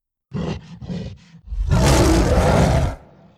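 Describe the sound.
A human voice imitates a gorilla, starting with four short guttural grunts, then bursting into a long, loud, rough roar that fades into a breathy trail.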